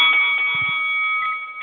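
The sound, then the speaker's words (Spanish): A bell rings with a steady, piercing metallic tone that holds at an even loudness for under two seconds, no voices over it, with a brief low thump partway through. “Okay, ya tú sabes, al sonido de la campana, pa'lante.”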